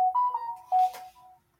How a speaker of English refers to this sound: Sorry about that, folks. Forgot to silence my phone. I'll do that in a second.